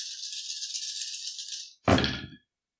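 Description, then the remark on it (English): Dice, including a stress die, rattle steadily for almost two seconds with a bright, high clatter for a heavy machinery roll, then land in a brief, louder tumble on a hard surface and go quiet. No one speaks. “Sorry, I forgot about my stress die.”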